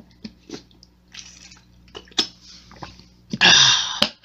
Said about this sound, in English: Let me take a quick drink.